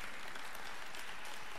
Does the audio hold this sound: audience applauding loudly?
yes